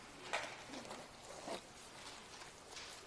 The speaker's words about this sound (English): And we also have pencils we can pass out if anyone needs a writing implement. We do have, I'm going to dig more of those out of the binder in case we need them.